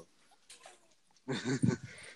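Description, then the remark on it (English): After a second of faint rustling, a pet dog lets out a sudden, loud burst of barks, a couple of sharp, throaty yaps trailing off quickly. “Holy crap, he scared me. My dog.”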